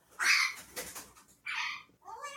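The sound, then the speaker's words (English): A pet bird named Chico squawks loudly in a few harsh, high bursts: a long raspy cry, a shorter screech, then a rising, wavering call at the end, with no one talking. “Even Chico the bird knows that this is a great big lie.”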